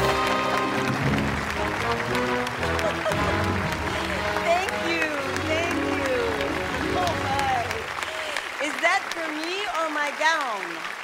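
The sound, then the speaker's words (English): An audience gives golf claps steadily throughout for the film's stars Kirstie Alley, Ellen Barkin and Allison Janney, with rising and falling voices and cheering woven through the applause, which stays fairly even in loudness for about eleven seconds. “Hey, golf claps, golf claps.”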